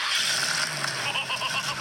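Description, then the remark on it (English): A prize-winning Ford car's engine cranks and catches, settling into a steady, loud, gritty roar for a couple of seconds with no pauses. The car won a World of Wheels prize. “Now he's going to start it. Is it throaty?”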